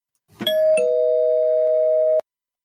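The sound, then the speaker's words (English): A loud two-note doorbell chime used as a spoiler-warning sound effect: a bright ding followed by a slightly lower dong that rings on steadily for about a second and a half before stopping abruptly. No voices. “And I'm going to spoil it, so I'm going to hit the spoiler bell.”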